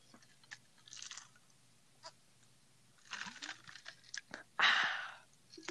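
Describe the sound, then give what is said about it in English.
Sipping of mango iced tea: soft clicks and mouth noises build up, then a loud, hissy slurp near the end, with no talking. “Anyways, as I take another sip of my... Oh, man, this thing is really hard to get. Mango iced tea.”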